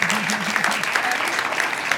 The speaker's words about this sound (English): So everybody give them a round of applause.